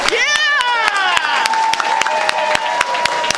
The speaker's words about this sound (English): And our hands for the type of slow clap normally reserved for jocks in come-from-behind sports stories. Slow clap. Slow clap. Speed it up. Speed it up. Speed it up. Yeah!